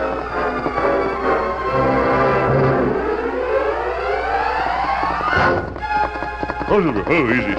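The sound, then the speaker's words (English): Steady clip-clop of the Lone Ranger's horse Silver's hooves at the Taggart ranch house on a moonlit night runs throughout, with loud, long, sweeping whinnies rising over it and a quavering neigh near the end. “I heard your horse, mister.”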